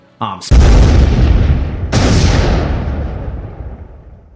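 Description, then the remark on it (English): Two loud, deep explosions set off by a lit fuse, the second about a second and a half after the first, each a heavy booming blast that rumbles and slowly fades. A brief sharp sound comes just before the first. “Whew, quite the explosive ending there.”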